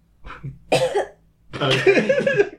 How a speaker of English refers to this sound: She just coughed up a hairball. That was a bit weird. Very kooky.